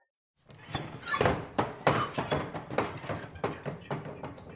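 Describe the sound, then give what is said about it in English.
Swinging tavern saloon doors open with a brief squeak and a run of loud wooden knocks and thuds. The rattling clatter repeats quickly for several seconds, and no one speaks. “That's the doors opening.”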